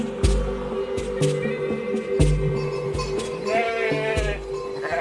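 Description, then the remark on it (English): Hundreds of sheep bleat over and around each other in a dense, overlapping chorus, with soft thudding and shuffling beneath, as the flock comes running down a mountain along a wooded trail, some in single file, others in little groups, near the town of Sigeur in Ariège in the Pyrenees. “Hundreds of sheep come running down the mountain along a wooded trail.”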